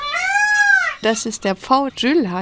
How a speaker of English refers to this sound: The loudest one among them is the peacock.